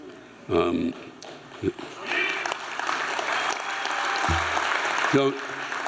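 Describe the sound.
An audience in California applauds, a steady wash of clapping that swells and holds, with a few voices and bursts of speech breaking through at the start and near the end.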